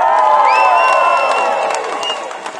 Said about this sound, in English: Unlike McKee, the only thing drowning Haruera out were cheers and applause.